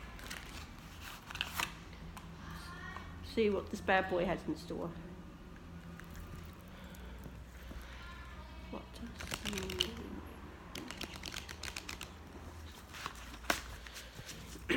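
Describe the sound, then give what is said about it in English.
Papery rustling and quick crisp flicks of a Halloween Moon Ritual Oracle deck by Soul and Spirits being shuffled in short bursts, with a voice speaking briefly over the handling. “Okay, let's begin shuffling.”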